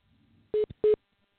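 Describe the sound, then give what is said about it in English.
Two short, loud electronic beeps at a steady mid pitch sound about a third of a second apart on a group phone call, where one caller has put himself on hold. Faint low hum comes before them. “I hear a beeping yes. sound. Do you hear that?”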